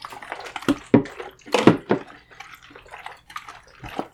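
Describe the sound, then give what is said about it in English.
Developer liquid sloshing inside a closed developing tank as it's shaken in continuous agitation, irregular splashy surges and gurgles in a steady back-and-forth rhythm, moderately loud, with no talking. “So again, 30 seconds continuous agitation at first.”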